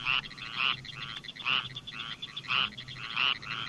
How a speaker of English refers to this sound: That's the squirrel tree frog, mm-hmm. the one in the foreground. There's several other things calling in the background.